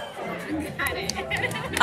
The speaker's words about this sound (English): Thank you for the clap. Did you hear that, Jolenta? Literal clapping.